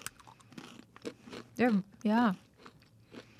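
Mini pub-style pretzel twists being crunched and chewed, with crisp, scattered bites spread across the moment, broken by two short wordless vocal sounds in the middle.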